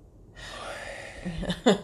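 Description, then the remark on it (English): A long, airy breath drawn in, followed by a shorter, slightly voiced exhale, like someone demonstrating slow breathing. “It's how you breathe in another country.”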